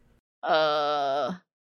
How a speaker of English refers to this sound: The AMV is for Evangelion, and it's just Shinji screaming and freaking tracks. Really, it's very tragic.